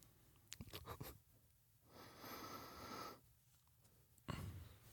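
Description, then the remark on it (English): Quiet sniffing of isobutyl nitrate (poppers) from a small bottle: a few short snuffles, then one long drawn-in breath through the nose, and a final sharp sniff near the end. No talking. “Give it a good sniff.”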